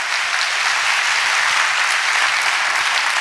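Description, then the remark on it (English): A church audience claps hands together at the pastor's call during a worship service, in a steady, dense wash of applause, many overlapping claps blending into a loud, continuous roar with no voices standing out. “Clap your hands and say, I'm in here, Pastor.”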